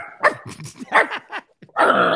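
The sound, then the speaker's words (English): A person imitates a dog, speaking to a dog named Toto in its language, letting out a quick run of loud barks and yips, a brief pause, then a longer, rougher growling bark to finish. “Would you send my dog Toto? Outside? No, speak to Toto in Toto's language.”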